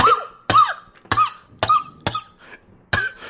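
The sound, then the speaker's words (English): A loud fit of coughing: about six or seven harsh, hacking coughs in quick succession, each a sharp burst with a raspy tail, with no talking. “smiled at Saul, then coughed”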